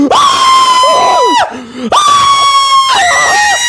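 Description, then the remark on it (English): A person imitates a man screaming: two long, loud, strained yells separated by a short gap, with other voices briefly whooping or laughing beneath them. “He starts screaming.”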